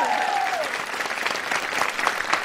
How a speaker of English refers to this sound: You can't see them. There's a live crowd here to say hi to you.